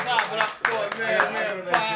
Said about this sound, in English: I got married for 5 years. Clap it up.